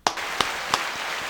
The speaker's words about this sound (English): All right, well, them was our pet peeves of the week. That was clap it up. Clap it up for the pet peeves.